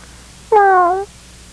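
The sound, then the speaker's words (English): A person imitates a cat with one drawn-out, slightly falling meow lasting about half a second, loud, with quiet stillness before and after. “You do the first one in cat.”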